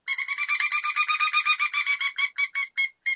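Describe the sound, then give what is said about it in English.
A pileated woodpecker locator call, used by a hunter to locate a bird: a loud, rapid run of bright, ringing notes that slows near the end into a few spaced calls, with no talking. “And then you could go to a pileated woodpecker, same thing.”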